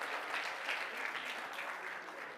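An audience claps steadily as a hand clap of praise to the Lord, a dense wash of many hands applauding at an even level for the whole stretch, with no voices standing out.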